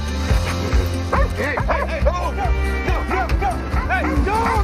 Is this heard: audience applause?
no